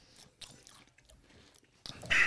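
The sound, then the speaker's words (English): Crisp crunching of a Fire Roasted Jalapeno Pringles potato chip being chewed, with irregular bites and a louder burst of crunching at the end. No one speaks. “Just crunched half that chip and half of it made it, what is this, Fire Roasted Jalapeno?”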